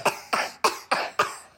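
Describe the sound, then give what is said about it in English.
A quick run of five harsh coughs in steady rhythm, each a sharp burst that trails off, fairly loud with no talking. “Maybe little guy is fine. He hasn't coughed in about...”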